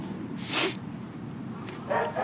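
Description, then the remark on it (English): A dog gives two barks, about a second and a half apart, moderately loud over a steady low background hum, with no talking. “What kind of dog is that?”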